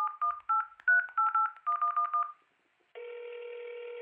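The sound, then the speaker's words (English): A quick run of touch-tone beeps as a phone number is dialed to call a car service, about ten short dual-pitched tones, then a brief pause and a steady, continuous phone tone. “So I called a car service, and...”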